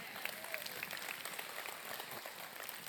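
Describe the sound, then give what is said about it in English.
A crowd applauds steadily, many hands clapping into a dense, even crackle that holds at a moderate level for about three seconds, with no voices. “Come on, you clap your hands for that.”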